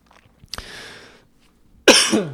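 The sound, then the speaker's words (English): Two sharp coughs a moment apart, the second louder and harsher, with no talking around them. “I remember hearing these people like coughing”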